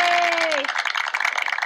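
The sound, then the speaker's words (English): A burst of applause: many hands clapping in a dense, steady patter for under two seconds, with a brief held tone sliding down and fading early on. “Clap.”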